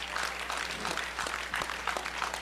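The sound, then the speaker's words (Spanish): An audience at a night church service bursts into sustained applause for God, many hands clapping at once in a dense, steady wash of sound with no voices standing out. “Regálale un aplauso a Dios en esta noche.”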